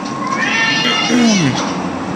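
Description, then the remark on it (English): A cat yowls angrily, a loud, drawn-out meow that rises and bends into a strained caterwaul over a steady bed of background noise. “See, he's fucking with that cat, and the cat's like, "You motherfucker! You motherfucker!"”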